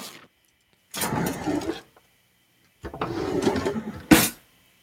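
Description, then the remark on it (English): A kitchen drawer slides open with a rumbling scrape, pauses, then slides shut and ends in a sharp knock as it closes. It is fairly loud, with no voices. “It's a kitchen drawer.”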